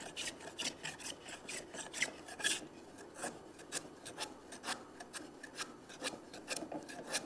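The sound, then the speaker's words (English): A hand plane shaving wood, pulled toward the worker, in quick, steady short strokes, roughly two per second, each a brief dry rasping swish at an even, moderate loudness, with no talking. “Now I'm pulling the plane toward me because I got run out any other way.”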